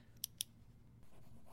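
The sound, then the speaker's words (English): Two quick sharp clicks of a pen, then a soft, steady scratching as the pen is tested by scribbling on paper, fairly quiet with no voices. “Now for remaining pen number two.”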